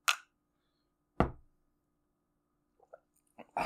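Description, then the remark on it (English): Drinks clinked together in a toast: two sharp, loud knocking hits with brief decays, a few faint little taps, then a final burst. No one speaks. “Since we're breaking some ground here, I'm going to cheers to this.”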